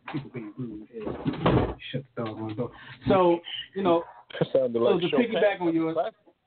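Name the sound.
door being shut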